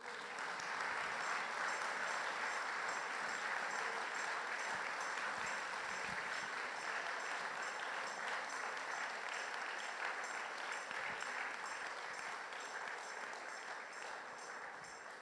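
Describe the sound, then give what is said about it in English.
A church audience claps for the Lord together in a steady, dense roar of applause that holds at a constant loudness for about fifteen seconds, with no voices standing out above it. “clap as if you believe it.”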